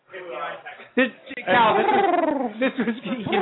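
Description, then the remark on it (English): A man's voice imitates bird calls, a run of warbling, cooing whistles and chirps that rise and fall in pitch, with brief pauses between bursts. “He does bird noises.”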